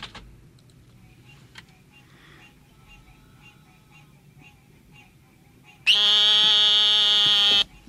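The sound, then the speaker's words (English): An eastern narrowmouth toad gives a single loud, nasal buzz that holds steady for almost two seconds, following several seconds of quiet background filled with faint, scattered clicks and chirps. “Now, Java, I think, mentioned that he found the call of the brown long-nosed toad, which I can't remember the name of.”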